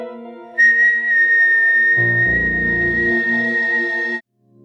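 A person whistles one long, steady high note that holds for several seconds over a low droning tone, with a deeper rumble joining partway through before everything cuts off abruptly.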